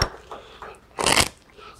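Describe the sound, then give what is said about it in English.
A deck of playing cards is shuffled by hand by a volunteer during a card trick: a few faint papery rustles, then one brief, louder crackling riffle before it quiets again. No one speaks. “I just want you to pick them up and just give them a couple shuffles in your hand.”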